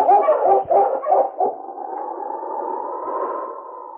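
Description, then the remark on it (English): A husky sled dog named King, being driven on toward the top of a ridge in heavy snowfall, gives about four quick, loud barks, then breaks into a long, steady, mid-pitched howl that rises slightly and holds to the end. No one speaks. “On, you husky!”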